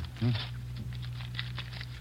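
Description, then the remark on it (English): Cellophane crinkles and rustles in a quick series of crisp bursts as a new deck of cards is unwrapped, over a low steady hum and a brief murmur of voice near the start. “I haven't unwrapped him yet”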